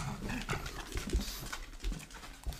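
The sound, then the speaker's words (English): An older pug with dementia barks in the house at about 3 a.m., short, repeated bursts roughly every half second, moderately loud, with a faint background hiss and no talking. “Every morning, our older pug wakes me up about 3 a.m.”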